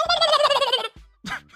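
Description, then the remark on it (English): A person imitates a turkey gobble for Thanksgiving: a loud, rapid, warbling burst of just under a second, a short pause, then a briefer second gobble, with no other talk. “I mean a turkey.”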